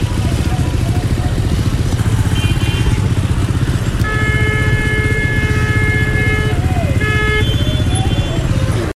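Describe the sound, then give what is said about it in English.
Heavy, continuous traffic at a very busy roundabout in Jabi, Abuja: loud engine rumble from motorcycles and cars that never lets up, with a brief high-pitched tonal whine partway through. “Here we are at a very busy roundabout in Jabi, Abuja, where we will observe whether or not drivers and pedestrians obey the traffic and road signs.”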